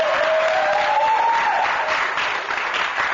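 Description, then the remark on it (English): A group of people at an Alcoholics Anonymous home group meeting in North Carolina clapping together in a steady, dense burst of applause that holds at an even loudness for a few seconds, with a faint whistle-like tone rising briefly early on. “And my home group's here. We clap.”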